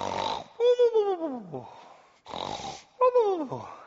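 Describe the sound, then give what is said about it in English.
A person imitates a grandfather snoring while asleep in a Lazy Boy recliner: two slow cycles, each a rough, rasping inhale followed by a wheezy, whistling exhale that slides downward. The voice is fairly loud. “And Grandpa had fallen asleep, and he was snoring along on a Sunday afternoon.”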